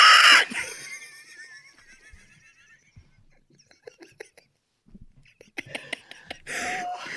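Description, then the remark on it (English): A person imitates a pig with shrill, nasal squeals: a loud burst at the start and another at the end, with scattered soft clicks and breathy noises between. “That's the one good impression I can do, is an MPN pig.”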